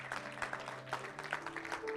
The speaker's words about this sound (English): Thank you, Jesus. Let's give him a hand clap of praise. Thank you, Lord.